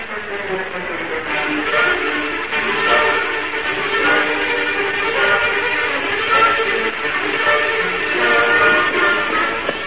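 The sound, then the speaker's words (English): A train idling in place, giving off a steady, dense rumble and hiss that holds at an even, fairly loud level throughout with no clear movement or speech. “There's the train still standing on the tracks.”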